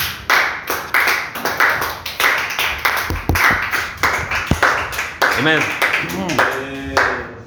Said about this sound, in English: Well, let's clap unto the Lord.